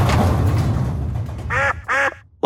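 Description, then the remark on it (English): A duck gives two loud, nasal quacks in quick succession, with a third starting just as it ends, following a stretch of rumbling background noise. “Wow, you almost ran into the duck.”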